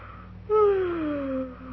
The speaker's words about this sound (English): Will you please stop yawning? It frightens me. Why? Your mouth is open, and I'm afraid you're going to talk.